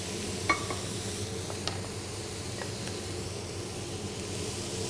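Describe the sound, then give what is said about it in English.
Green beans, added raw, and 1 cup of black beans stir-frying in a pan with oyster sauce, a steady, even sizzle filling the whole clip, broken by a few light clicks and taps of a utensil in the pan. No one speaks. “I can see that they're now hot and cooking.”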